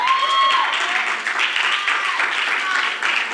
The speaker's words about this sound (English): We're going to clap for anything, but that's pretty good because we're making impact.